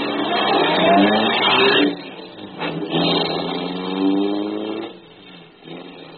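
A car engine turns over and revs up in loud, rising surges, dipping briefly before climbing again, then settling into a rougher idle near the end. No voices.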